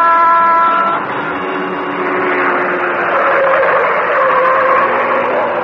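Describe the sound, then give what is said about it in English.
The Green Hornet's car, the Black Beauty, speeds through city streets in the darkness, roaring past at high volume, its engine whining and shifting pitch continuously, opening with a brief horn-like blare before the rushing motor noise dominates. “Like a glittering black comet in the darkness, the car of the Green Hornet whipped through the city streets.”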